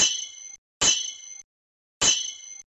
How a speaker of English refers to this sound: They heard everything, though. The gnashing of teeth. The clanging of claws.